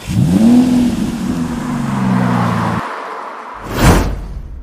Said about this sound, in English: And then they gets in car and leaves.